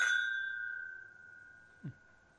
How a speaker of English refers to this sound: I really like the chink, the clink sound on these.